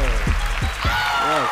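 A steady wash of crowd applause, dense and fairly loud, clapping throughout the short stretch while a few low thumps and faint tonal sounds sit underneath.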